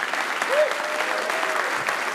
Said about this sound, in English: And let's give everybody here one more round of applause. Southern Methodist University, thanks for hosting the Adam Ritz Show.